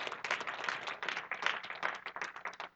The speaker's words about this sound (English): Yeah, you can clap there. I think that's good too. Yeah.